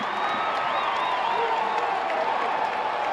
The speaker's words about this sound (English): Oakland with two timeouts. Oklahoma State with one. The crowd roaring here in Gallagher, Iowa.